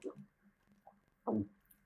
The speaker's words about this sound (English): Listen to my gulping.